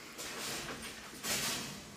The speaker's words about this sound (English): Was that the pail? I'm pretty sure that was a metal baby gate. The baby's asleep. It wasn't the baby to knock that down.